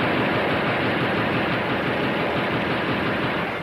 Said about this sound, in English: Well, those are the noisiest grasshoppers I ever heard. You, Christopher Columbus, we're being shot at!